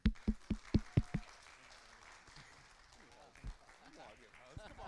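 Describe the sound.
Audience applause at a church morning service, welcoming a speaker to the front, opens with about six sharp, loud claps in a quick steady rhythm, then fades into a low, dense crowd wash with faint voices murmuring underneath.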